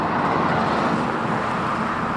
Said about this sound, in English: Cars drive by often.